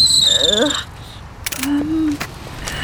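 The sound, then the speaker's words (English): Bicycle gears being changed for city cycling give a shrill, sustained squeal for almost a second, followed by a few sharp mechanical clicks and clunks and a brief lower whine. “I just can't figure out these gears.”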